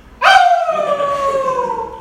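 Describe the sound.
A person imitates a werewolf howl during class roll call: one long, loud, sustained cry that starts abruptly, then slowly slides downward in pitch with a rich, harmonic tone, fading slightly at the end.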